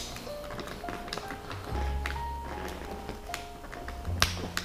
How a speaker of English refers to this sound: But I have my water with me. Let me open this bitch up.